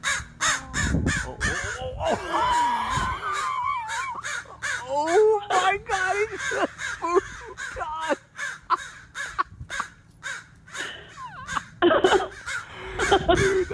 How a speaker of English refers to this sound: Yeah, she meant well, But she forgot about the mommy crow up in the tree that didn't like it. And so she expressed her displeasure at the woman messing with her baby. The little baby crow. The mom's mad at me.